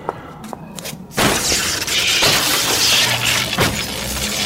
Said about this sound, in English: I smashed the computers with the axe.